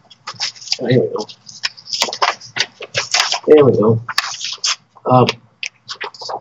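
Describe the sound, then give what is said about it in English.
Crisp rustling and shuffling of papers in repeated short bursts as someone leafs through a stack looking for a particular paper, with a few brief murmured vocal sounds in between. “I'm looking for the paper I've got here.”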